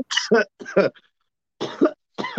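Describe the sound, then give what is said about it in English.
A loud fit of harsh coughing after a hit of weed smoke: two quick bursts, a brief pause, then two more raspy coughs, with no talking in between. “See, this is, I normally hit it and then I cough while the animation is playing and my mic is off.”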